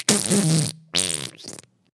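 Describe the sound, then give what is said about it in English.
Two loud, wet-sounding fart noises, a long sputtering burst followed by a shorter buzzy one, likely made by a person imitating the sound rather than the real thing. “Oh, that's how you fart. That was a wet one.”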